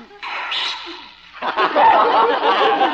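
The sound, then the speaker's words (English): A small Pekingese dog named Princess Lotus Blossom, being given a bath, sneezes: a short snorting burst followed by a louder, breathy rush of sneezing and snuffling that fills the rest of the moment. “Gesundheit, Your Highness.”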